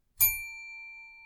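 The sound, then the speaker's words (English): A single bright bell ding, a bell used to control a rowdy panel, strikes sharply, then rings on with a clear sustained tone that slowly fades, heard alone with no talking. “To help me control my rowdy panel of recidivists and reprobates, I will employ what I have called the inappropriate bell.”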